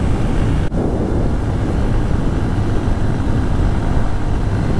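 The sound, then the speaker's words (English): A Honda XR150L motorcycle engine drones while riding on pavement at about 45 miles per hour in fourth gear, a loud, continuous low rumble mixed with rushing wind noise, with a brief click near the start and no talking. “Commute Chat: Honda XR150L & More!”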